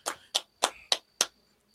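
Hand clapping as a round of applause, in a slow, steady rhythm, about six sharp, evenly spaced claps, each a crisp burst that quickly fades, with no voices over them.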